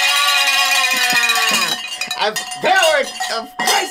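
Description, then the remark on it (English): A bright, metallic bell rings loudly with a sustained, shimmering tone for about a second and a half, then voices start talking as the ringing fades underneath. “Pick up your bell. Get your bell.”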